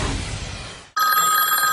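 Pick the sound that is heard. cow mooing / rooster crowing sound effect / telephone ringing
telephone ringing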